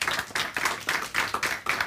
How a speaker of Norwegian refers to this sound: Så gi dem alle en skikkelig applaus.